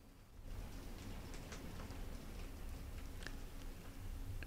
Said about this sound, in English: That's insane. That's the rain. That's the thunderstorms that are coming.